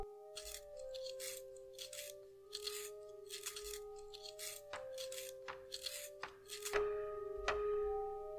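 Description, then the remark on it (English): A pencil being sharpened, with a series of dry, rasping scrapes in uneven bursts and a few sharp clicks, over a faint steady tonal hum. “Okay, while you're doing that, I need to sharpen a pencil for you.”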